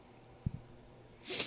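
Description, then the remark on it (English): A quick sniffle: a sharp, breathy nasal inhale near the end, preceded by a couple of soft low thumps. “Oh, I got the sniffles, sorry.”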